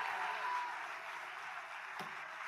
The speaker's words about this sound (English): Come on, if you receive that, go ahead and do what you're already doing. Take 15 good seconds. Clap your hands, all ye people.